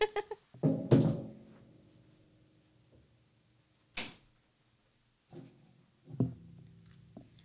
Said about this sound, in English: Let's close the door.